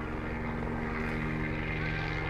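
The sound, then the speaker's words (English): A green and yellow sheriff's helicopter drones steadily overhead as a boat leaves a port, its engine and rotor producing a continuous, fairly loud low hum with a tonal whine that holds level throughout. “So leaving the port, and of course, helicopter.”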